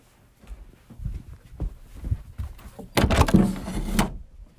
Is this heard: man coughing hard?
no